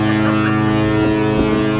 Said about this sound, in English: There's that foghorn again.